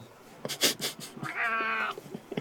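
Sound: cat meowing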